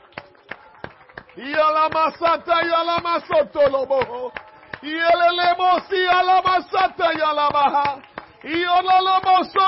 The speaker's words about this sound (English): Let's clap our hands unto the Lord tonight.